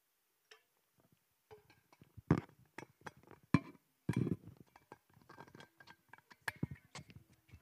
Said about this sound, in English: Pause while I drink water really quick.